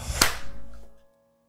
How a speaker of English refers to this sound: We're gonna clap. Yeah. In 3, 2, 1.